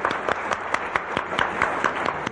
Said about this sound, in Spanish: Un aplauso para la maestra.